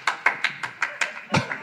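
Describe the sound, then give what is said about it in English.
A lone man in the audience of a live comedy show claps at a steady, fairly quick pace, about eight crisp, bright claps in under two seconds, with the last one a bit heavier. “He's applauding because you threatened his life before the show.”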